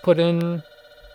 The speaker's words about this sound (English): Let's pause it because the phone's ringing.